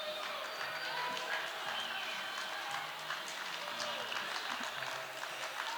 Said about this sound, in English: So applaud amongst yourselves.